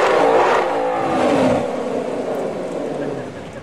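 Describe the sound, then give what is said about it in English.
A car engine revs hard during a burnout in the water box, a loud, steady roar that holds high for a few seconds and then eases slightly as it drones on. “So he does a burnout in the water box.”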